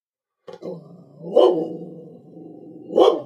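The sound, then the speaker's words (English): A dog barks in a few loud, drawn-out woofs, the two strongest spaced well apart, with a lower vocal rumble carrying between them and no talking. “Anyway, my dog really wants to weigh in on this conversation.”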